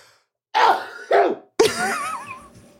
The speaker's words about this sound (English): I have to sneeze, so cut this out